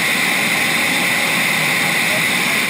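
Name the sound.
airplane engine roar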